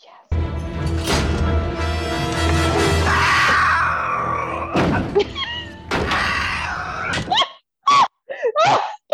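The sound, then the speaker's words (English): A loud, raw caveman-style yell from a man, long and strained, then breaking into several short, guttural cries and grunts separated by brief silences. “I'm gonna do an audio clip of his yell.”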